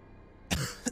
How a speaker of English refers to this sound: You see, like, with his cough, this black, like, ichor comes out of his mouth as he...